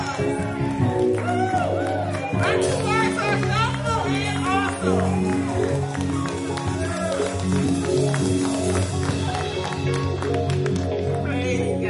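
An audience applauds loudly and steadily, with cheers, whoops and excited voices mixed into the clapping, filling the whole stretch without a break.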